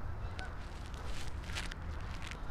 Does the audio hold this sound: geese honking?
yes